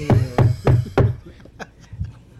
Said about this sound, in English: you know who's knocking.